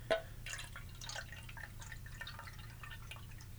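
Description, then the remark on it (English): Five ounces of pineapple juice being poured as a drink ingredient, a steady trickle with light splashing and gurgling that runs continuously for a few seconds at a fairly quiet level, with no talking. “The next thing, 5 ounces of pineapple juice. And I got that right here.”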